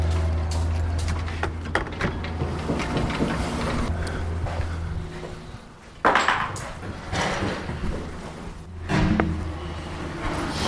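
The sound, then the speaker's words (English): Metallic clanks and rattles of a heavy padlock being worked loose and pulled free from a door, with a few sharp knocks and scrapes over a steady low hum, no talking. “The heavy padlock is coming off the door.”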